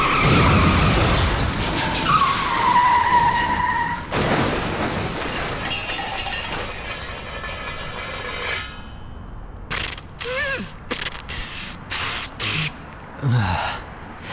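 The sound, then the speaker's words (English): Bus tires skid loudly on a busy street, a long harsh screech over rumbling traffic that fades after several seconds, followed by quieter short bursts like gasps. “I'm in the path of a bus in the middle of a busy street.”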